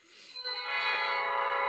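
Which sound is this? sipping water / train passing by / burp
train passing by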